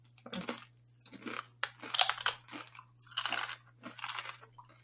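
Crunching on crisp, plain tortilla chips, about six or seven bursts of bright, crackly bites and chews in an uneven rhythm, fairly loud, with a steady low hum underneath and no talking.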